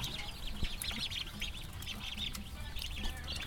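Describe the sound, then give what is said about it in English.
Many ducklings in a store pen peep at once in a dense, continuous chorus of high, overlapping chirps, steady, over a low background rumble. “I like the ducks a lot.”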